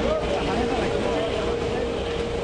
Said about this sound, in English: As the boats come alongside, small portable conveyor belts are set up to whisk the boxes from the boat onto the docks and ready for auction.